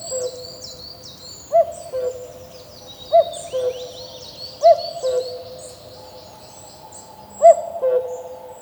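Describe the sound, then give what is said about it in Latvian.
A cuckoo calls its low two-note 'cuck-oo' four times at a steady, unhurried pace, while smaller birds twitter faintly and continuously in the background. “bieži mēdz gadīties no rīta, ka tu eji peldēties dīķi un šeit tev atkal kūkū, un tad domā, nu, labi.”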